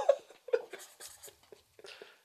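A pen scratches across paper in a few quick, uneven strokes, the way someone signs their name, signing an Excellence in Podcasting Support Award certificate, while soft murmuring voices carry on underneath.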